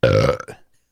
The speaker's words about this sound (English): I got a burp.